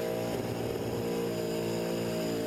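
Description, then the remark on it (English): A loud engine revs hard with a steady, strained roar throughout, its rough mechanical drone filling the whole moment without any voices, as it is pushed so hard that it blows out. “The engine blows out from Clive pushing so hard.”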